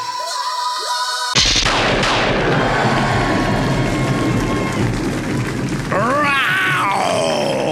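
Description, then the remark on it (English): A monstrous bear roar, the roar of a giant bear attacking an elven hunting party as in the comic Dusu, Path of the Ancient #1, bursts in suddenly, a loud, deep, rasping growl that rumbles on for several seconds before a second rising, wavering roar near the end. No one speaks. “growl is the onomatopoeia of the week. And also the roar of a giant bear attacking an elven hunting party as seen in Dusu, Path of the Ancient, number 1.”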